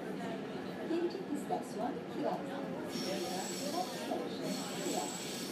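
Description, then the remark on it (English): Steady rumbling roar of a metro train running through a tunnel in Istanbul, Turkey, with a continuous hiss, occasional faint metallic squeals, and indistinct voices murmuring beneath the noise. “And once we landed, we got into the metro to get to our couch surfer's place on the outskirts of old Constantinople.”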